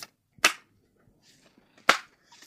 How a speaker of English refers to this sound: I'm still shuffling my cards.